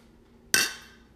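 Glasses of a beer brewed in Baltimore (6.2% alcohol) clink together once in a toast during a beer tasting, a single bright, high-pitched chime that rings briefly and fades out, with no talking.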